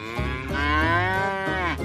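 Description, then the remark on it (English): A single long, loud cow moo with a rich harmonic drone that rises slightly and holds steady before trailing off. No voices accompany it. “Then they heard a moo in reply.”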